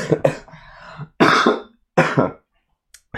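A few harsh coughs, starting with a throaty rasp and then two loud separate hacks with brief pauses between them, and no talking.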